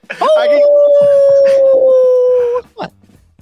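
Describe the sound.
A person imitates a wolf howl with one long, steady note that swells in and holds for over two seconds before cutting off, followed by a short murmur.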